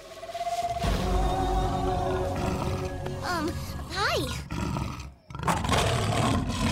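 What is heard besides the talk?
lion roaring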